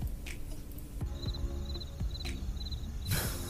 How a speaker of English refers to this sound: Crickets, crickets, crickets.